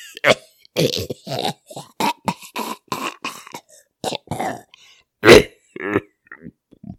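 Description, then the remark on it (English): A man's rapid run of harsh, hacking coughs and throat-clearing noises, loud, at a restaurant table, bursting out in quick succession with one especially forceful cough near the end. “The coughs grew in intensity.”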